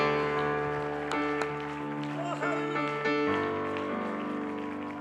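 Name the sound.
audience clapping hands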